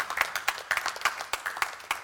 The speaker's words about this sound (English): You see, most of us are applauding Jesus right now because we'd agree with that.